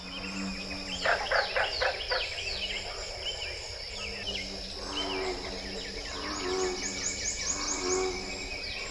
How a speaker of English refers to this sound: Called the Big Thicket Natural Preserve, a valuable piece of this utterly unique natural world has been conserved. Let's listen again to America's Ark as bullfrogs sing alongside northern cardinals and prothonotary warblers.